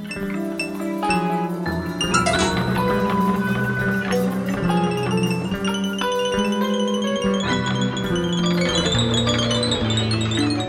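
A whirring, helicopter-like synthesizer sound churns through dense, steady music, layered over sustained harmonic tones and bright bell-like notes for about ten seconds, with no one talking.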